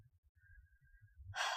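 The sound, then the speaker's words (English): Heavy, close breathing pushes right into the microphone, low rumbling puffs building into a loud, harsh exhale of rushing air at the end. “I'm breathing into the mic really hard.”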